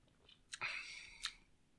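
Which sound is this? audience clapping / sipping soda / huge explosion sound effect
sipping soda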